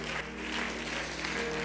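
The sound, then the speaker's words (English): An audience applauds for the Lord, a dense wash of many hands clapping at an even, sustained loudness with no voices standing out. “One more time, let's put our hands together for the Lord tonight.”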